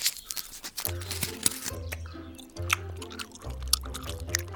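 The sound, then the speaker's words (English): Wet, sticky chewing of bubblegum, with smacking and squelching mouth sounds repeating in an uneven rhythm. There is no talking. “We can use the chewed bubblegum together to form a shield-like sail that'll catch the wind in its bubble field and really get us moving.”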